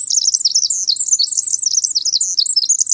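Songbirds chirp rapidly and continuously, a bright, high-pitched stream of overlapping tweets and trills, fairly loud, with no voices present.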